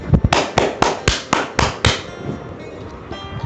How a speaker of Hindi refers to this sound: इनके लिए जोरदार तालियां।